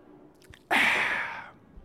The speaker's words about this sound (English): The reason I love Bucked Up is because their stuff just works. Whether it is the Miami, ooh, I've got like 2 good sips left.